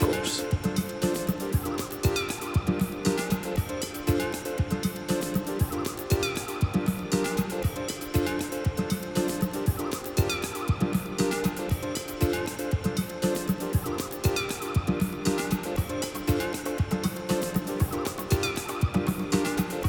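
A dense, steadily pulsing 1989 Balearic house track with sampled high, wavering common loon falsetto cries recurring over the beat at regular intervals, loud and upfront throughout.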